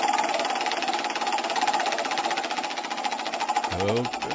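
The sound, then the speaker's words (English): Rapid, steady mechanical clicking of a pretty big prize wheel, the wheel of super tailgate foods, being spun, runs the whole time at a fairly loud level, with a voice briefly breaking in near the end. “All right, so we're going to spin the wheel, see where it lands.”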